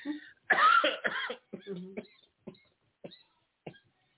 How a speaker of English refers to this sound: Excuse me, y'all. I'm coughing on the radio, and I shouldn't be, but some things need to be cleared out.